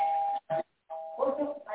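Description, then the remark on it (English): An electronic doorbell rings, a steady chime tone in a few short bursts with a brief gap, and voices start talking over the last ring. “the doorbell just rang”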